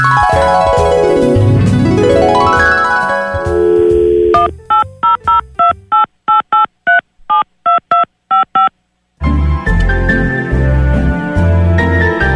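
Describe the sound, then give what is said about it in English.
About a dozen crisp touch-tone beeps punch out the number of the Butterball turkey hotline in quick, slightly uneven succession, sandwiched between stretches of loud music that stop for the dialing and then resume. “And here is part two of that phone call.”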